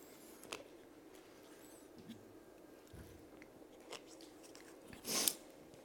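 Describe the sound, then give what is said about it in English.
Someone quietly drinking water: faint wet mouth clicks and small swallowing sounds, then a louder sip or gulp near the end, with no talking. “Get a drink of water.”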